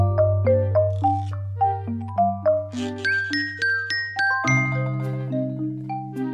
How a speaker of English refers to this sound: They're a little bit like, is it polyphonic ringtones? Yes. You know the old that's ringtones what it reminds me of. Yeah, yeah, yeah. Well, okay, look, play here's the next one. The second pop song transferred into a lullaby.